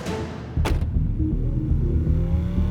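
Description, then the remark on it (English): A getaway car's engine rumbles loudly and revs up as the vehicle accelerates away into the night carrying three thieves and stolen paintings, a steady low roar with a brief sharp burst near the start, no voices. “Together, the 3 conspirators sped into the night, taking with them some of the world's most beloved paintings.”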